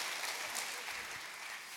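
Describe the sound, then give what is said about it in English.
A golf clap: soft, steady applause from a group, a continuous patter of many hands at an even, fairly low level for under two seconds, with no voices over it. “That's a golf clap.”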